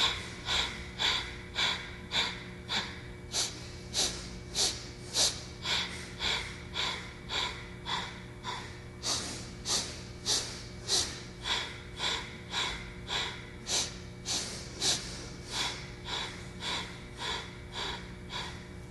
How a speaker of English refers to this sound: So we'll inhale for 3 sniffs and exhale in 6. Take that same meditative posture, fingers are up or palms are facing down. Inhaling in 3 sniffs, exhale 6.